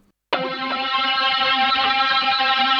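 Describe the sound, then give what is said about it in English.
A synthesizer tone kicks in abruptly and holds steady, thick and buzzy with gritty amp distortion drive smearing its bright upper harmonics, playing alone with no voices. “Right, well, I can certainly hear some kind of amp distortion going on.”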